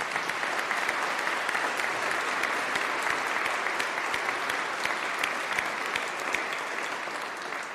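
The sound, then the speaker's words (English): A choir claps together during worship at Preston Hollow in steady, sustained applause, many hands producing a dense, even patter of sharp claps that holds at a consistent loudness for several seconds with no voices. “I so want to make a joke about clapping in worship from the choir.”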